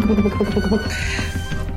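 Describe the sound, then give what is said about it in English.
A person imitates a cat's meow as the sound a little bracelet makes when a blow cuts across its wearer: a short drawn-out vocal cry with a bending pitch, fairly loud, lasting under two seconds. “Cuts across her, dealing this blow that makes her little bracelet go, meow!”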